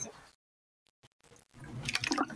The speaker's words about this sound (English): I'm drinking water.